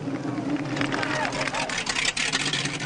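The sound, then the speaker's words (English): Police cars approach with a steady, rumbling wash of engine and road noise that fills the whole stretch, while voices talk over the din. “Calling all cars, calling all cars, leaving a big mug and heading your way. Here come the cops.”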